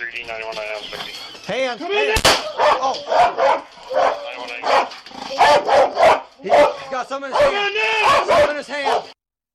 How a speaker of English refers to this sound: There's two windows. One AC window, the last one. We're going to send that dog in.